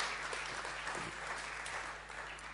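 An audience in a church claps steadily, a dense wash of many hands blending into a continuous patter at moderate volume, with no voices breaking through.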